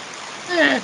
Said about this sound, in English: Here comes the rain. Oh, hail. Huh? Is that hail? No. Does it sound like hail? Yeah.